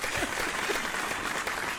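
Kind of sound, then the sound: sound effect, crowd cheering sound effect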